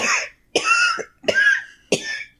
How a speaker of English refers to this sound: There's a woman laying down in basically rags. All right. Coughing.